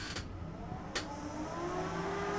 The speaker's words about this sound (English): So, 95 filthy degrees. I have this fan / fake ass air conditioner in here, but it's very loud. Here, this is what it sounds like.